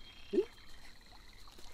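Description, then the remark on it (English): A frog croaks twice in a played video clip, short low-pitched calls spaced well apart, heard fairly faintly over a quiet, faintly watery background with no talking. “That's what happened to the frog. Yes. That's the real clip.”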